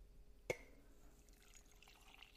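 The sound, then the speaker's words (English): Coffee is poured into a cup: a sharp clink, then a soft, steady trickle of liquid, quiet, with no voices. “Time for the ceremonial pouring of the coffee.”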